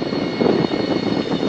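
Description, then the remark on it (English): A small airplane engine drones steadily at a high idle during a pre-flight run-up, a dense, even roar with faint thin tonal whines above it and slight pulsing in the low rumble. “We were finishing the run-up at this point.”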